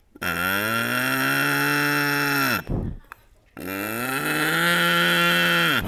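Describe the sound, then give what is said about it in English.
Two long, loud mooing calls, each drawn out for over two seconds with a brief pause between. A human voice imitating a cow to call cows over to play on a farm, clear, with no other sounds around. “Like, if you want to play with the cows, this is what you do.”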